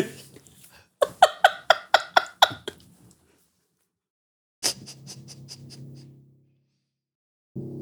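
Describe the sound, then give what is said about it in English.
A rapid, evenly spaced burst of about eight harsh coughs, a pause, then another rough cough trailing into a strained wheeze, apparently a person imitating a coughing fit. “I love coughing.”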